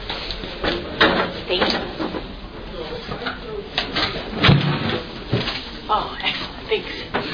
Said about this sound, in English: It's a little loud. Should I try to close the door?